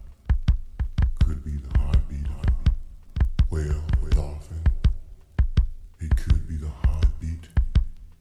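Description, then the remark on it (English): A steady heartbeat thumps, with paired beats repeating at a quick, even pace, backed by a low murmuring hum and faint voice-like tones. “Could be yours, could be mine, could be the heartbeat of a child.”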